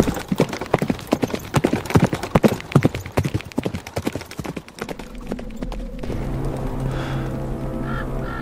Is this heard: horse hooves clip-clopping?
yes